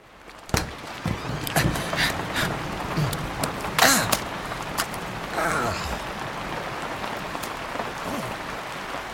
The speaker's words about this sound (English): Today we can expect another day of rain. All day, nonstop. Like rain every day the rest of the week as well. Why is it always raining here? This is New Mexico, not Seattle.